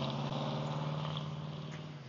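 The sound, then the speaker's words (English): Street traffic passing as school is just getting out, a steady low engine rumble and hum that holds at an even, moderate loudness throughout, with no voices. “School's just getting out, so we got lots of traffic going by here.”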